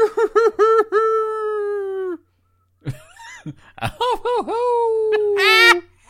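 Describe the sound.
People imitate wolf howls with their voices: a few quick yelping notes rising into a long, sustained howl, a short pause, then more yips and another drawn-out howl ending in a higher wail.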